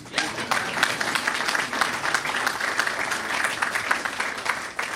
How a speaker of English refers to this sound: You better applaud him.